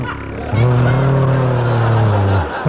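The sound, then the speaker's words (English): A voice imitates a motorcycle with a loud, steady, buzzing drone held for about two seconds at a fairly low pitch, then cut off abruptly, over a murmur of background crowd noise. “That's supposed to be a motorcycle.”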